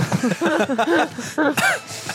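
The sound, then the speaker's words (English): A person coughs a few times in the background, short rough bursts mixed with throaty voiced sounds, moderately loud over about two seconds. “Someone in the background's coughing.”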